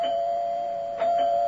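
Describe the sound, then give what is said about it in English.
A doorbell rings with a steady, sustained mid-pitched tone that holds throughout, fairly loud, with two quick renewed chimes near the end. No voices. “Will you open the door, Lily?”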